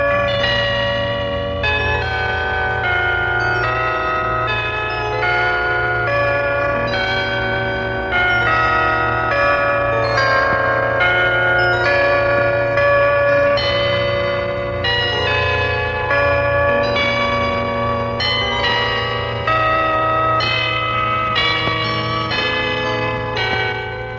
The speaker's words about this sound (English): Heard the bells on Christmas Day, their old familiar carols play, and wild and sweet the words repeat, of peace on earth, goodwill to men.